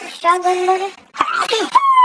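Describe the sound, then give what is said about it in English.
A single loud sneeze: a drawn-out voiced intake followed by a sharp burst, then some brief vocal noise trailing after it. “That was definitely a sneeze.”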